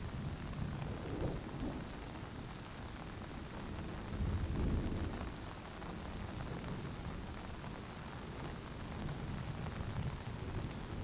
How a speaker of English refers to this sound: As lightning streaks across the sky and the tumbling roll of thunder vibrates the air